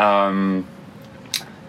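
A dog outside gives one drawn-out, full-throated bark that fades into quiet room tone, followed by a brief faint scrape.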